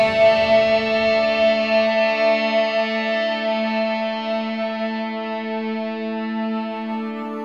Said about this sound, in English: Of course, end with some distortion, which I've done on, I think, all of my albums at this point. If I didn't, I messed up.